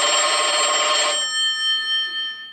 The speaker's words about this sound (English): Okay, so the phone's ringing again. Maybe I should get that.